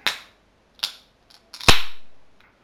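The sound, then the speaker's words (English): A beer can with a brown label, gold logo and design, black rim and black key tab is opened: a few sharp metallic clicks, then a loud crack followed by a hiss of escaping gas that fades out over about a second. No one speaks. “It's got a black rim and a black key tab.”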